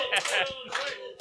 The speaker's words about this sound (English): yeah, give it up for cocaine, everybody. A round of applause. Cocaine.